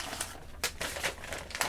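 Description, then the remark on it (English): Papers being shuffled and rummaged on a desk while searching for an electric bill, a run of irregular crisp rustles and crinkles, moderately quiet, with no one speaking. “I got a lot of papers on my desk here. It's going to take me a minute, young lady.”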